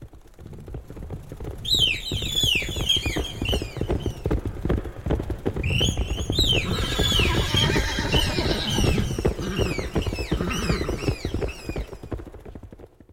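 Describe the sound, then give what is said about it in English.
A panicked horse squeals and whinnies frantically in repeated high, shrill bursts as it kicks about, over a steady rumble of stomping hooves, loud throughout, with no one speaking. “Horse panicked and kicked about.”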